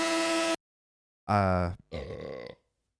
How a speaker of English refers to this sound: Got distracted by your burp.